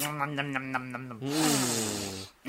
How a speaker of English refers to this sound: Meanwhile, though, we cut to a French man. The French hunter. Bonjour, mon ami. I want to sniff and lick this fur.